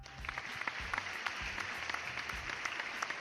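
A small crowd claps in a steady, dense patter of overlapping handclaps lasting a few seconds, fairly soft overall, with a low rumble of murmuring underneath.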